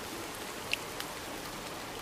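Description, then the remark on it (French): Steady rain hisses evenly across the whole stretch as it rains over Bengal, a dense wash of falling water with a couple of brief, sharper drop taps near the start. No voices. “Il pleut sur le Bengale. Tous regardent le bruit de la pluie.”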